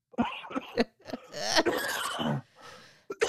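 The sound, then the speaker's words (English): A loud coughing fit after something went down the wrong pipe: several sharp coughs in quick succession, then a longer strained, wheezy stretch of hacking and gasping, ending with a couple more abrupt coughs. “Can you tell me when you go cough? Oh my God.”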